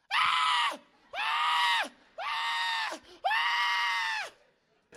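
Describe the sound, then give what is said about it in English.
A voice imitates a newborn baby crying: four loud, harmonic wails in a row, each about a second long with short breaths between, and no other talk. “Every single baby came into the earth just like this.”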